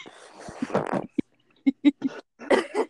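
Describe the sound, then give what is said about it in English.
A voice imitates a loud, ripping fart let out while bending over slowly to get a pencil, with a long, spluttery raspberry followed by several short, sputtering bursts. “So I'm like, okay, I have to get my pencil, but it's going to make a fart noise.”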